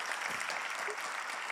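A crowd applauds steadily, a dense wash of many hands clapping at an even, sustained loudness throughout, with no voices rising above it.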